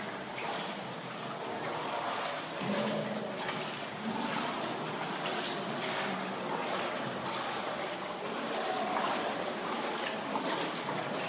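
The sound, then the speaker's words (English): Water flows through Hezekiah's tunnel, an ancient stone tunnel with a low ceiling, in a steady, continuous rush, a broad hissing wash with faint trickling detail that holds at an even level for the whole stretch, with no voices. “There's the water flowing through still today.”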